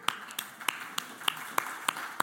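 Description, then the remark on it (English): Sparse audience applause for a woman on her 13th wedding anniversary: about eight sharp, bright claps land at uneven intervals over a steady background hiss, with no voices. “Now, that applause is for her and everybody knows it, okay?”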